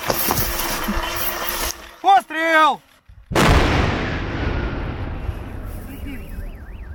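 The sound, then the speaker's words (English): A single massive controlled explosion of heavier bombs booms out after a short lull, then rolls into a long, deep rumble that slowly fades. Brief voices and background noise are heard before the blast. “They blow up the cluster bomblet on the spot and then move the heavier bombs to a different location for a massive controlled explosion.”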